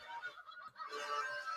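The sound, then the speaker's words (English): A duck quacks in harsh, nasal bursts, a short call followed by a longer drawn-out one, fairly quiet, with no talking. “You hear that duck? Quack.”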